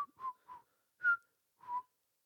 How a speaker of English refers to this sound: I said whistle